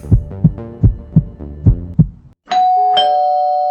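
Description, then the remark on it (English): A doorbell rings with a two-note ding-dong chime that rings on clearly, right after a run of six steady, low heartbeat-like thumps. No one speaks. “We both jumped as she pulled her hand back suddenly at the sound of the doorbell.”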